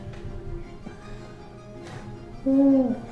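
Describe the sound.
A voice imitates an owlbear's owl-like call with a single low, drawn-out hoot near the end, mournful and steady in pitch, louder than the quiet murmuring background before it.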